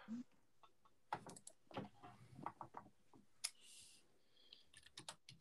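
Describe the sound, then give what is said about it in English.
Quiet computer keyboard typing with irregular bursts of clacking keystrokes, some sharper clicks among them, and a faint hiss and brief rustle partway through. “Clicking the clock of the keys or typing in something.”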